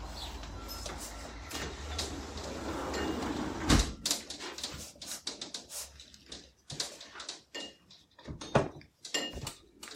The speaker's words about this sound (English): Let me close the door to the outside.